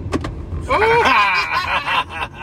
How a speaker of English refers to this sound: Wait a minute. Does this thing not have a glove box? Oh, here you go. Or you got to push a special button. Open glove box.